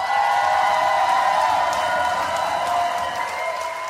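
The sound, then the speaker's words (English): A crowd breaks into sustained applause mixed with cheering and a few whoops for the speaker's mother on his birthday, a dense steady roar of clapping that holds loud for several seconds before easing slightly. “First and foremost, give Mama Freeman her round of applause.”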